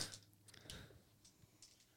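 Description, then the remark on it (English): Dice are rolled in a pub beer drinking game, clattering and tumbling across a hard surface in a quick run of small, sharp clicks and rattles that trail off into scattered taps, landing on nine. Fairly quiet, with no voices. “go ahead and roll those dice, and we'll tell you what you got to do.”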